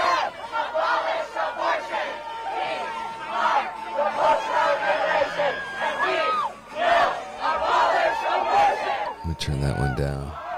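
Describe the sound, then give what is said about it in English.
A crowd of protesters screams and shouts in a continuous, loud roar of overlapping voices, with rising and falling yells throughout and a sharp burst of noise near the end. “Oh my gosh, this pro voice just started screaming.”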